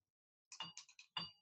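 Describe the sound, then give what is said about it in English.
Fresh ice cubes from a freezer chest clink into a glass in a quick cluster of bright, ringing taps, a short pause, then one louder clatter that rings out briefly. No one speaks. “So I gotta say, there's certain benefits to having a freezer chest right here. A lot of benefits, including fresh ice cubes.”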